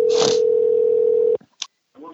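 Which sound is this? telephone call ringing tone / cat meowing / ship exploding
telephone call ringing tone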